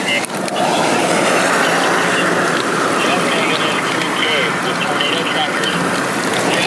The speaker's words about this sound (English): We are caught in some rain. We're about to go south for a bit to get out of the rain.